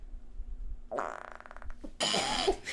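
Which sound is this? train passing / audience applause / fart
fart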